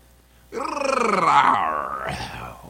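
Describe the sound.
A person imitates a lion waking up with a drowsy growl, one drawn-out, rumbling, rising-and-falling vocal snarl lasting about two seconds, loud, with no other talking.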